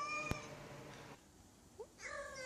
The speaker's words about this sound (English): Dear God, they're like, they might be making love, these two cats. Like, that's actually what's going on here.